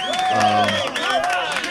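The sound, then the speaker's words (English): A short burst of crowd applause, with loud cheering and whooping voices layered over scattered clapping, sustained at a steady, lively level throughout. “And I feel like we should applaud those people. We should applaud those people.”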